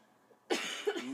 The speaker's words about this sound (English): Pardon me for coughing.